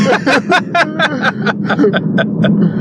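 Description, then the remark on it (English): A Ford Focus RS hatchback's exhaust pops and crackles in a rapid, uneven string of about a dozen sharp bangs over a steady low engine rumble, loud, while driving under an overpass. “We Pop And Crack In A Ford Focus RS”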